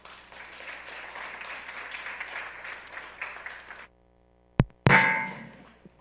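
A crowd claps together to the Lord to welcome a speaker, in a steady, dense patter for about four seconds, then stops abruptly. After a brief silence come a sharp thump and a loud burst of rustling.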